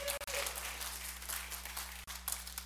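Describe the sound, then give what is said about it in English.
A crowd applauds in a steady, dense wash of clapping, with a low steady hum underneath and brief dropouts in the sound. “You can keep clapping.”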